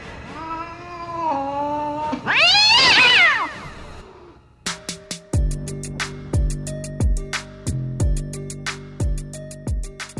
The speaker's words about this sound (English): That's not a live cat.